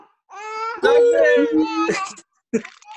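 A young child screams loudly and up close in a long, wavering outburst lasting nearly two seconds, then lets out a shorter cry after a brief pause.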